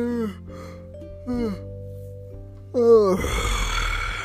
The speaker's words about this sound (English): I'm not tired. It's just, I don't know. I just want to yawn, and that's all.